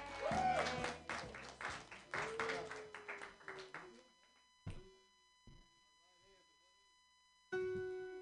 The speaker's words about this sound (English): All right, your next comedian. What a lovely gentleman he is. Clap your hands wildly for